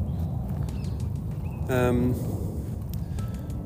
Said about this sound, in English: Yes, the seagulls are here.